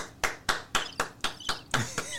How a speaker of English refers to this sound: I had to clap.